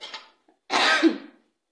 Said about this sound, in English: Now you are already coughing, which means there is another matter. I am already dealing with the spices here too, which the smell is making me cough.